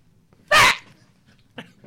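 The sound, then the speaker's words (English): A voice gives one very short, loud, strained imitation of a rooster's crow, clipped off after a quarter second, then a fainter brief vocal sound follows. “What's a crow one sound like? The crow sound like...”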